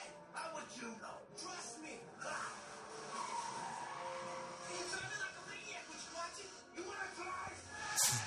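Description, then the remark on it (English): Vehicles race along in a movie chase scene, with a Koopa police car being chased by Koopa: revving engines and repeated tire skids and squeals in a loud, busy action-scene mix with a sharp burst near the end, voices faintly present underneath. “Right now they're in a chase scene, yep. Driving a Koopa police car, getting chased by Koopa.”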